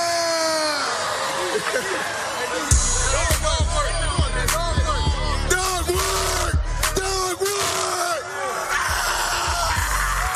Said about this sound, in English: It's just McVay screaming, and then Aaron Donald is doing whatever that freaking pose is that you bodybuilders do, and just hulking out. Everyone is just raging.